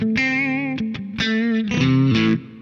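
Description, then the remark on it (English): An electric guitar pushed through a power booster pedal plays a few loud, sustained notes with a gritty, harmonically rich edge, ringing briefly before cutting off. No one talks. “This interesting, like, push damp, but it's not like a distortion. It's like, gets angrier.”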